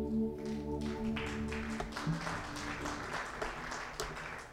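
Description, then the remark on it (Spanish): An audience at a church service claps steadily for the musicians as they take their places, a dense patter of applause lasting several seconds while a sustained musical chord rings underneath at first and then fades away. “Démosle un aplauso ahí a ellos.”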